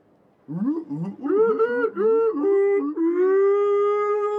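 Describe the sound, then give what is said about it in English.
A human voice imitates whale song with a run of wavering, swooping moans that rise and fall in pitch, then settles into one long, steady sustained tone. “Somehow I Morse code my whale song and say thus, detach yourself from the wrist.”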